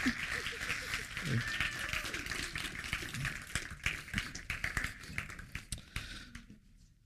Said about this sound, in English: Let's clap, give him a round of applause.